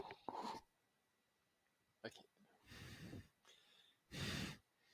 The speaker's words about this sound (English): You're breathing like directly into the mic. Just God damn it. Extend it like right here.